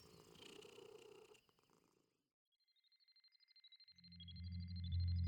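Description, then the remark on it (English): A cat purrs in steady rhythmic pulses that swell into a loud, deep rumble, while a high warbling electronic tone hums above it after a brief burst of noise. “Because I can't have you turning into the cats that destroyed the world.”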